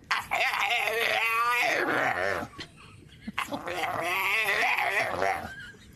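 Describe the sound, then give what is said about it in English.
A dog groans and whines at its owner over some food in long, drawn-out, wavering moans, two loud vocal stretches separated by a short pause, almost talking in tone. “Finally, here's a viral video of a sassy dog arguing with its owner over some food.”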